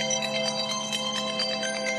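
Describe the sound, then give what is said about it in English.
A phone rings with an incoming call, a steady, bright electronic tone that pulses rapidly and repeats throughout, moderately loud, with no voices. “I really, really resent calls in Chinese that are spam”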